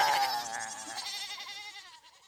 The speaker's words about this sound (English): Hey, what the heck, more goats? Holy crap, where are all these goats coming from? Stop it. Holy fuck, goats! Goats, come on, stop!